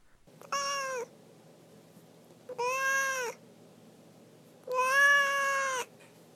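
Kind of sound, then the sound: animal, domestic cat meowing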